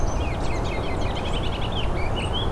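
A white-throated sparrow a few yards away sings thin, high whistled notes among a busy scatter of other bird chirps, including a ruby-crowned kinglet, set against a steady low outdoor rumble, fairly soft.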